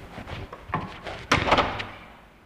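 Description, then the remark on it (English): The door of a brand new bachelor apartment closes with a solid thud, followed by a few sharp metallic clicks like a lock being turned, with no one speaking. “And for the first time in 12 years, he had a door he could lock.”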